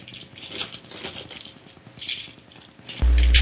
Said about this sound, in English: I've got our 20 dice here.